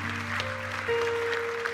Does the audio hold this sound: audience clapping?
yes